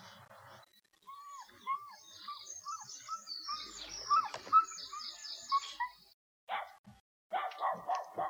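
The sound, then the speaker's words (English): Birds chirp and twitter for several seconds, then a dog lets out a few sharp barks in quick bursts near the end, with no one talking. “Dog knows something's wrong.”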